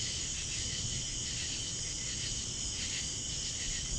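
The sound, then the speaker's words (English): A steady chorus of crickets chirps continuously at moderate volume, a dense high-pitched trill layered over faint low rumble, with no voices present. “Crickets. Yeah, literally. literally in the back.”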